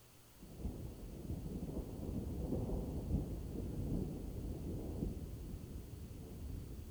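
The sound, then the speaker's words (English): A deep, rolling rumble of thunder from an approaching storm swells in after a brief quiet and keeps grumbling low and steady for several seconds, heavy, with no voices. “As the storm comes nearer, it begins to rain.”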